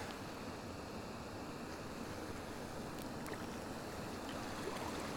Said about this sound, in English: It's a low waterfall, it's not very high, but after the rain yesterday it's running quite strongly. I love how it's cascading over a flat rock and then dropping, free falling about a foot into the sea, churning up the sea